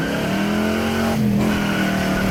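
A big 1968 428 Ford Cobra Jet V8 muscle-car engine revs loudly, its deep steady rumble holding high for a couple of seconds with a brief dip in the middle, no voices.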